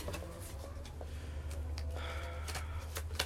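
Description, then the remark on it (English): A deck of playing cards being shuffled, a run of quick papery riffles and soft flicks over a low steady hum, with no one speaking. “Make sure to shuffle them.”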